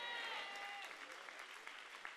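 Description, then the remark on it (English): An audience claps hands in a dense, steady wash of applause, loud and sustained over about two seconds, with a few sharper individual claps and faint voices mixed in. “Come on, somebody ought to clap your hands and say a good amen.”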